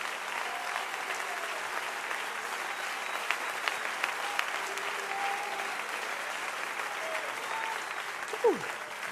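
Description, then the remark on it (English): A church audience claps hands loudly to thank God for the baptism water, a dense, sustained wash of applause, steady throughout with a brief whistle-like sweep near the end. “Come on, clap your hands a little bit louder if you thank God for the water.”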